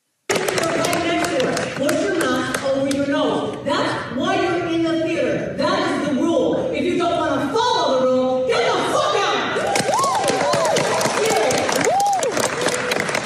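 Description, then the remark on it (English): A Broadway theater crowd claps steadily in a dense, continuous patter while an actor who stopped the show loudly berates an audience member not wearing a mask; toward the end, whoops rise above the applause. “Can you imagine having an entire theater of people clapping at you being reprimanded?”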